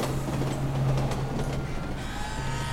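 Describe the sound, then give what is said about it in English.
An elevated L train headed downtown rumbles past at 1:42 p.m. with a steady low drone and metallic screeching overtones, loud, filling the whole moment with continuous mechanical noise. “And there's the 1:42 p.m. L train headed downtown.”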